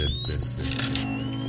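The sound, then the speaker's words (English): A zip disk is inserted into a zip drive with a few soft mechanical clicks, followed by a steady whirring hum as the disk spins inside, and faint high-pitched tones, with no voices. “But when you're running late, as he is today, loading just 3 zip disks, just 3, takes a lot of time. They need to be inserted.”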